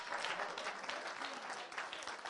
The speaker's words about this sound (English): Can somebody just put their hands together and give God some praise?